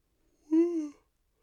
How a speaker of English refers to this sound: Sixth yawn.